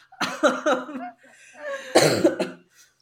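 A string of several throaty coughs in quick succession, then a brief pause and another harsher cough burst, loud, with no talking.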